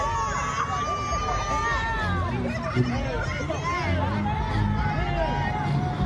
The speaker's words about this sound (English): Here's what it looked like in the streets as Donald Trump was leaving the courthouse after his mugshot. You can see people literally cheering for him. Free Trump.